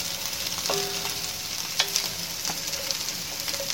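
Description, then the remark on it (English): Oil sizzles steadily in a pot over a medium burner as broccoli fries, a constant crackling hiss broken by a few sharp clinks and scrapes of a utensil against the pan. No one speaks. “That sizzling oil you can hear is the broccoli oil.”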